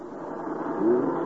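A hired truck's engine rumbles steadily, rising slightly in pitch and loudness midway as it backs in to load magazines with a crew, with no voices present.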